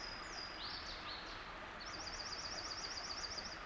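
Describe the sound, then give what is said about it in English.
A Louisiana waterthrush sings a few high, slurred, falling notes, followed by a junco's bright, rapid, even trill, near a stream at the bottom of a hollow, over a steady rushing background like flowing water. “The bright trill of a jonco and the high-pitched song of a Louisiana water thrush.”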